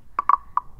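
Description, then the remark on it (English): A few quick, croaky rasps from a scraped Latin American guiro come in an uneven cluster of three or four short strokes, moderately loud, with a dry buzzing tone and no voices. “This is a gyro from Latin America, and it sounds like this.”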